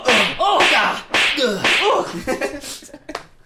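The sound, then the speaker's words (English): A voice mimics a series of broad slapping swipes, made several inches away from another person, with about five quick, breathy whooshes and smacks, loud, in an uneven rhythm with no actual words. “I'm doing a broad slapping motion.”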